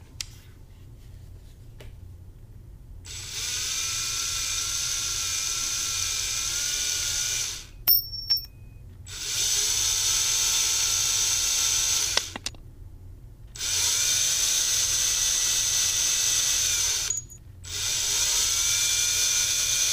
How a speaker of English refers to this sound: The door's a lock, so I'm gonna use my handy dandy screwdriver and try and get in there.